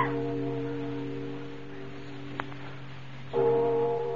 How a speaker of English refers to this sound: There's nobody in that belfry. Bells can't ring by themselves, old man. There's somebody pulling the rope up there, and we're going to find out who it is.